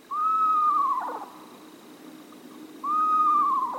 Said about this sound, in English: Screech owls, tiny, adorable owls, will happily raise their little ones in a nest box designed for them.